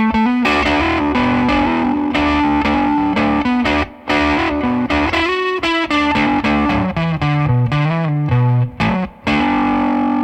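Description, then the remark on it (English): Electric guitar, a Strat played into a Vox AC15 amp through a silicon fuzz pedal using a BC108 transistor, loud, buzzy and saturated, strumming and picking a riff of sustained chords and notes with a couple of brief pauses, no voices. “I'm going to play with a Strat into a Vox AC15 and use the BC108 to hear what kind of tones I could get with that combination.”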